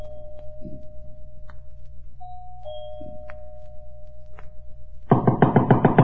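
A doorbell, pressed at the front door, rings inside a big, unlit house at night: a low steady hum and a few soft taps, then a loud, rapidly rattling electric bell bursts in for the final second. No one speaks.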